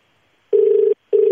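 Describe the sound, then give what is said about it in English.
A telephone ringing tone sounds in two steady, buzzing bursts at a medium-low pitch, separated by a short gap, with no voices, during a call to the Eagle Boys food delivery line. “So let's give them a buzz and just let them know how we feel.”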